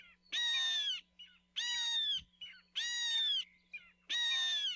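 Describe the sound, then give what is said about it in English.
A Hawaiian hawk ('io) gives four shrill, high-pitched screams, each about half a second long and evenly spaced, with faint rustling between calls and no talking. “Eo have shrill, high-pitched calls that sound a bit like their name.”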